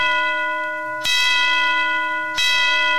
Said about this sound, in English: Bells will be ringing, the glad, glad news.